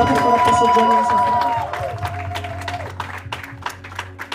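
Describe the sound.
An audience claps their hands in a dense burst of applause with sustained tones and voices underneath, then it thins into scattered, irregular claps over a low steady hum.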